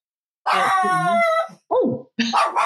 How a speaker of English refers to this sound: And there's Momo. So Momo always shows up in the podcast at some point. We just never know when. He's such a good tiny guard dog.